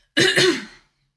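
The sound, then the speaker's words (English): A fairly loud throat clearing that rolls into a short cough, two quick rasping bursts lasting under a second, with silence before and after. “I'll let you cough a minute.”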